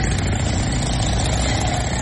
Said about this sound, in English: Listen to the noise. Oh, it's motorcycles. Listen.